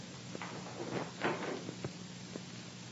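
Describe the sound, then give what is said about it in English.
A door is opened to answer it, with a scatter of sharp clicks and latch rattles, then a brief creaky scrape in the middle, at moderate volume against a low steady hum. “Answer the door.”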